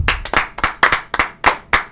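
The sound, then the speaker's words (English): A short burst of hand clapping, sharp close claps in a quick, slightly uneven rhythm, like a small round of applause from just a person or two, with no talking. “Round of applause.”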